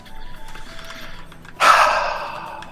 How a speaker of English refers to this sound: Well, you're breathing rather heavily. Oh, because it was nerve-wracking.